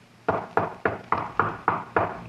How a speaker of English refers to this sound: Then I heard the knocking on the door. Somebody had heard the noise. It would be the police.